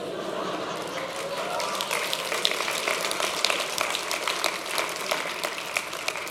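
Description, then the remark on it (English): An audience applauds a preacher during a sermon, a dense crackle of many hands clapping steadily at an even, moderate level for several seconds without letting up. “By the way, I didn't say that to receive an applause, but thank you very much.”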